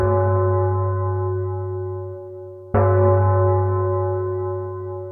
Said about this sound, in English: At the very top hung a huge bronze bell that was tolling now. And from inside that bell, with every crash and bang and gong, the small voice shouted, "Help! He's inside the bell! It's using his skull for a knocker!"